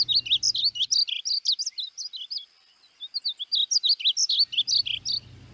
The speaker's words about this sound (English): Well, not big, they're kind of small, but they act like they're big, and like they yeah. sing and the song is very melodious. That's mm. also my favorite bird song.